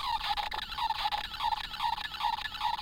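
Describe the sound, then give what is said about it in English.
A squeezed R2-D2 novelty bedside night lamp gives off a string of about six short, warbling beeps in a steady rhythm, sounding strained and squawky over a constant hiss of noise. “Talking bedside lamp. Yeah, well, beeping.”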